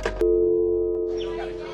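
A loud, steady phone busy tone hums on after a sharp click, holding one unbroken buzzy pitch for over a second while faint chatter creeps in near the end.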